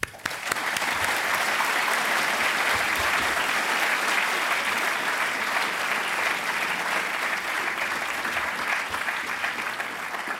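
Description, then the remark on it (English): Sustained audience applause welcoming Tim Harford to a talk at the London School of Economics, a dense, steady wash of many hands clapping at even loudness for about ten seconds, with no one speaking over it. “So please join me in welcoming Tim with a warm applause.”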